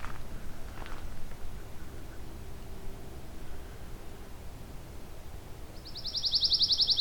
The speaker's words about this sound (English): Pine warbler right above me now.